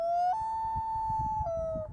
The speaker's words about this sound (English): I'm like, what the fuck is that sound? Is that like, that doesn't sound like an owl. Somebody fucking with me? Yeah, right. What's this? Oh. Loon call.